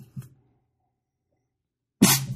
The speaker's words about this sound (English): You all right there? Coughed a little bit. Sorry. There's something in the finish. Need some water.